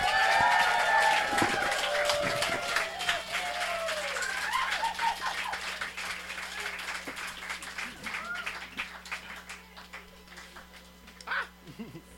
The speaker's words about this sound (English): So I want you to make a big round of applause for my airport layover friend, and my friend in general,